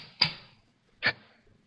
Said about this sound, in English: I put the edge of the chisel to one of the cleaving grooves and struck with the mallet.